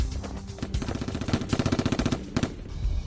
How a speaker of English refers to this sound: You could have Googled gun sound effect. Yeah. And just put that in your movie, and that's what it sounded and like.